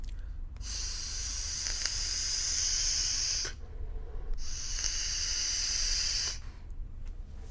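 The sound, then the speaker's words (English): An Innokin vape device with InnoCell technology and a blue battery fires twice with a steady, airy hiss, the first burst lasting about three seconds and the second about two, separated by a brief pause. No one speaks. “I guess it helps to turn it on.”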